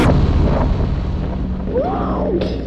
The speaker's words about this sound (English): Whoa! That gunfire? Out in the hallway, look.